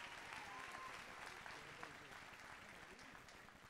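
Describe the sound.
A church audience applauds the Lord together, a dense, steady wash of clapping from many hands at an even level throughout, with faint voices mixed into the sound.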